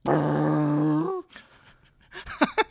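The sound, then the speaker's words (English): A person imitates a cow mooing with one long, low, droning note that bends upward at the end, followed by a quiet pause and a few short, fainter vocal bursts. “I hope they know that I'm doing an impression of a cow.”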